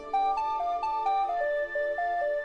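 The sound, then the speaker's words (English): A BlackBerry phone's text message alert melody plays alone: a quick run of bright, bell-like tones stepping up and down in a steady rhythm, clear, with no one speaking, announcing an incoming text. “It's Taint Hammer's Blackberry.”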